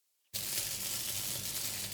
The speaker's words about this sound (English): Yes, it is rain on a tin roof. Let's go ahead and play this sound one more time for you.